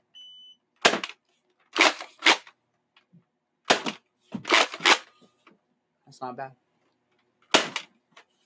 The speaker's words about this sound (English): But yeah, so we got Nerf rival guns, and these things are pretty cool. Don't shoot that.